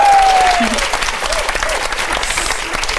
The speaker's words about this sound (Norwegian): Det var veldig fint, Marte. Du tok imot applausen med litt sånn ordføreraktig nikk.